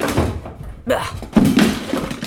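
drawer being shut

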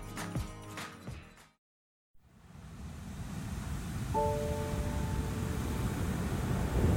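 waves on a beach

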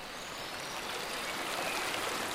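flowing river water

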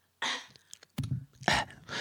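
cough away

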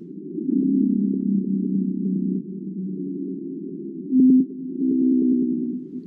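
blue whale vocalization

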